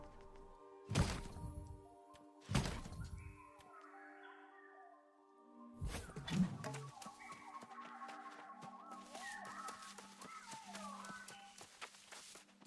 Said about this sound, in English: Was running along and an explosion came out of nowhere.